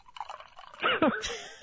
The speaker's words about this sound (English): I'm actually going to pour it into this mug here.